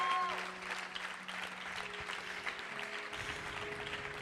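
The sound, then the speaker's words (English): An audience claps steadily in a dense, continuous wash of applause, with sustained keyboard or organ notes held underneath throughout. “Let's clap, church.”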